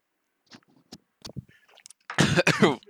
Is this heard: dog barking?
no